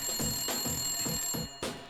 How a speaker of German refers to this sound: Und der Inspektor saß in seinem Büro und prokrastinierte, als auf einmal das Telefon schellte.